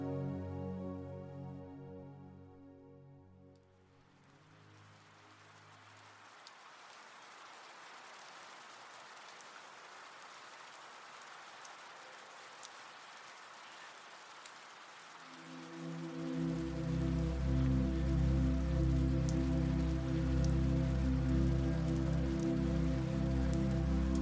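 Soft, steady rain falls outside a window on a windless rainy morning, droplets hitting the ground with an even hiss and patter, while a low sustained musical drone fades out early, then swells back in near the end.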